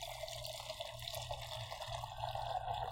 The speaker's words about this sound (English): Oh, yeah, that's about a 12-ounce pour. No, just kidding. That's probably only 10. Not even. Yes, it is, because that glass, it used to be mine, and right where it curves and starts to go up is 8 ounces.